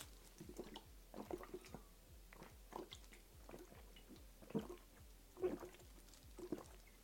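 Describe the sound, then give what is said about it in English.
Steady gulping as the rest of a very sweet, berry-flavoured soda is drunk down in one go: a quick series of wet swallows at an even rhythm, with faint liquid sounds between them and no talking. “I mean, it's sugar water at this point, but I'm going to down the rest of this here.”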